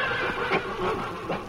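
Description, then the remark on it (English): A horse whinnies in a brief, wavering burst, fairly loud, over a steady noisy background with no one speaking. “Oh, which horse do you want to ride? The black.”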